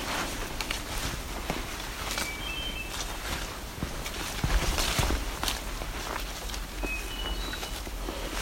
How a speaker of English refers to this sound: Coming up on the second hermit thrush.